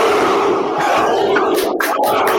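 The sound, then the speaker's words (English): A soundboard sound effect of a crowd cheering and roaring loudly, a dense wall of many voices with bright bursts of whooping and shouting toward the end, no clear speech over it. “This is the only sound effect that I have that's close to a clap.”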